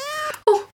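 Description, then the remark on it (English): A person mimics a cat's meow with two drawn-out, whiny vocal tones: a steady, slightly falling first cry, then a brief pause and a louder, rising-then-falling second meow. “You hear a meow.”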